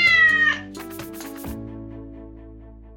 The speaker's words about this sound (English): And that's why Oliver is the sweetest cat that you'll meet.